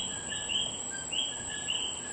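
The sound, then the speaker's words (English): Coqui frogs call at night in Puerto Rico in repeated high, chirping notes a second or so apart, over a steady shrill drone of insects, with no voices present. “This request comes from Alex at the Stateville Correctional Center, who wanted to hear the sound of the coqui frog in Puerto Rico.”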